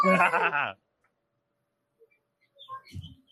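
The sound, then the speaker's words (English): A small brown parrot-like bird gives a loud, harsh, bleating call lasting under a second, followed by silence and then a few faint, scattered chirps and squeaks, with no talking. “It's like a bird. It's like a parrot. It's brown.”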